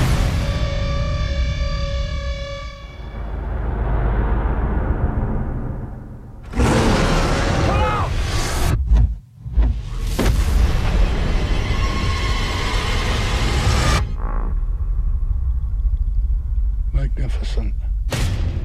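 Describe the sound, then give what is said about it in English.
A steady tonal drone gives way to a series of heavy explosive blasts set off to shake the earth and map the surface of a Pacific island, each a loud, deep boom followed by a long, roaring rumble that swells and fades. “We use explosives to shake the earth, helping us to map the surface of the island. You're dropping bombs.”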